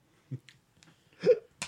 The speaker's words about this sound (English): I got the hiccups so bad. Oh, my God. I don't know why it makes me bad.